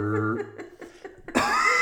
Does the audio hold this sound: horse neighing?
no